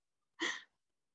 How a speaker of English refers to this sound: You know, so like I'm breathing deep now, like I could just go.